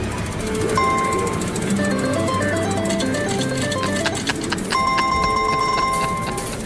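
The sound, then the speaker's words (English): Bright electronic chimes and a looping melody, the theme of a Walking Dead slot machine, play over a busy background din, with a burst of steady high tones and clicking near the end; the machine's seat vibrates when the song comes on. “Oh, when this song comes on and that slot machine, the seat vibrates.”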